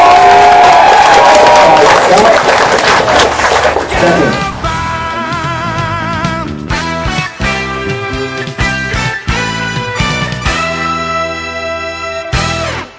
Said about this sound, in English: What I need you guys to do, and, oh my God, what I need you guys to do is first give Cassandra a big round of applause.